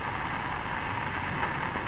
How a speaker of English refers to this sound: This show is called Avant-Garbage, and we are listening to an extreme thunderstorm and what it sounds like to drive a 2001 Honda Insight through the National Radio Quiet Zone.